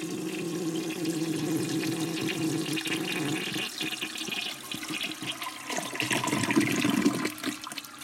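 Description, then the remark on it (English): A toilet flushes loudly, a steady rushing gush of water lasting several seconds that surges near the end before draining away. No one speaks. “So that just gets a flush.”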